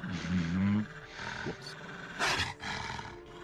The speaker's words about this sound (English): Take 8 damage as this wolf's teeth sort of crunch in around your arm, and it's snarling and it's snapping and it's whipping its head back and forth like when they kill chickens.